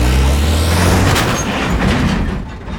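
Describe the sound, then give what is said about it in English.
A ute engine growls as it reverses, then a heavy crunching impact as it rams into a car again, with loud engine rumble running throughout. “Cookie reverses his ute and rams the car again.”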